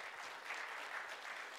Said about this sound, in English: I don't even get applause usually after messages.